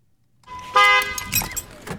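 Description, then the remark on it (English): A single short car horn beep, loud, with a bright buzzing tone lasting about half a second, sounded after a traffic light turned green, followed by some faint rattling road noise. “I don't appreciate that beep, sir.”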